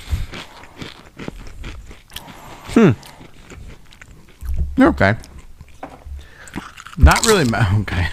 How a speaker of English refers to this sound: Just crunching so loud in the microphone.